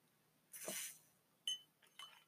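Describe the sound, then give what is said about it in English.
A soft, airy slurp of someone sipping a drink, followed by a couple of light clinks, one with a brief ringing tone, like a glass being set down, then a sharp tap. “Hold on. Sip break.”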